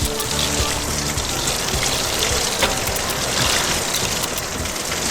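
Steady, heavy rain pours down on a cold, stormy April night in a dense, continuous hiss with a low rumbling undertone, holding an even loudness throughout with no voices.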